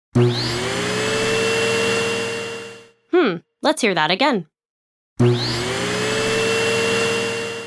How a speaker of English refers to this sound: Some people have a robot that vacuums their house.